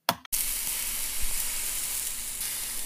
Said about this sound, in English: Now can you tell our listeners what they might expect it to smell like? Oh yes, it smells like slow roasted lamb perfectly sizzling on the grill.